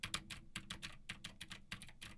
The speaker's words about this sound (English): Now I am typing on a keyboard with Gateron blue switches to see how much of my voice versus how much of the keyboard it picks up